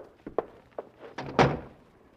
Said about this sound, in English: Close that door